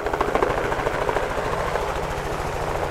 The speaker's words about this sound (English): A helicopter flies above the snowy open hills in the Grovant Wilderness in Teton County.